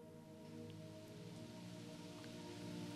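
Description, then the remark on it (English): Steady rain falls continuously, a soft even hiss with occasional distinct drops, over a low sustained humming drone. No one speaks. “When thoughts arise, listen to the rain.”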